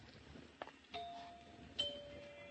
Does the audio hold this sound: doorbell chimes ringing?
yes